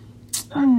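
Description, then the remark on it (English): A single quick sneeze: a sharp, hissy burst of breath, followed by a sustained voiced sound that slides gradually downward in pitch. “Bless you.”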